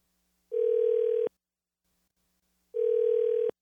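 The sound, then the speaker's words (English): A telephone line tone sounds while a call is being placed, in two steady, medium-pitched buzzing beeps, each under a second long, separated by a pause of about a second and a half, clear with no talking. “Let's call someone else on the phone.”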